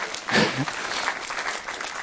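Steady, rapid clapping for God fills the whole two seconds, a dense crackle of hand claps at a fairly even loudness, with a slightly stronger burst near the start.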